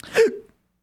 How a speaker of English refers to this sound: Excuse me. Oh my. This is a bad time to get hiccups. On a podcast? This is... Oh, no.